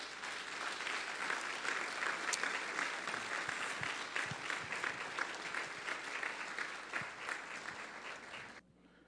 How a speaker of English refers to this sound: Let us give this fine group another round of applause.